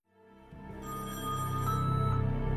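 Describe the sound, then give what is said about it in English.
A telephone rings in a scene from the 2010 film Pete Smalls Is Dead, with a steady, buzzing electronic tone that swells and grows louder over a couple of seconds, heard alone with no voices. “Jack, pick up the phone.”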